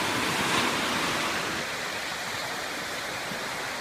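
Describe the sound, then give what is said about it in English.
A steady roar of ocean surf, with waves washing onto shore in a continuous hiss that swells slightly at the start and then holds even. No voices. “For some of you that have only lived in Iowa all your life, this is the ocean. This is what it does. Wave after wave after wave after wave after wave after wave.”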